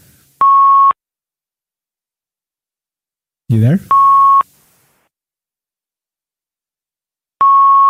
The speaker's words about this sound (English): what's the beeping? You beeping?